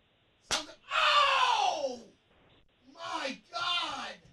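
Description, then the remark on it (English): A single sharp slap of a hand on a bent-over man's bare buttocks, followed right away by a drawn-out pained cry and then a couple of shorter vocal reactions. “Now, one of us went over there and slapped his ass.”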